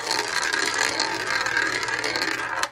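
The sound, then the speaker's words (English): A prize wheel is spun one last time with a rapid, steady stream of bright ratcheting clicks, fairly loud and continuous for a few seconds before ending abruptly, with no talking. “And on that bombshell, we'll spin the wheel one last time.”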